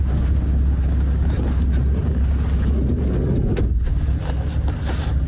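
Steady low engine rumble fills the cabin of an idling taxi cab waiting to go to Roxham Road, a constant muffled drone with faint rustles and no talking.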